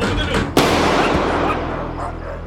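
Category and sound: impact, gunshots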